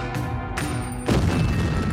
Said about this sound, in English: They torpedo the warship, then flee the scene. And then the Housatonic is rocked by explosions. The mighty Housatonic sinks in just 5 minutes, killing 5 Union men.